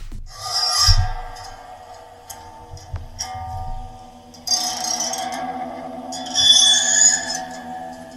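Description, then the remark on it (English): A door key scraped along the strings of an old piano, a sound effect found by Dick Mills, producing a grinding metallic rasp over sustained ringing tones, with a second, louder scrape swelling midway and peaking near the end. No one speaks. “An old piano, a door key, and Dick Mills one day stumbled upon the sound he'd been looking for.”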